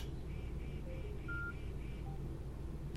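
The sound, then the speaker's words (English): A few brief, soft electronic beeps at shifting pitches from a phone as a Blue Ant headset, switched off by voice command, disconnects from it, sounding quietly over a steady low background hum with no one speaking. “You probably heard the little beep, which was my phone being disconnected from the headset.”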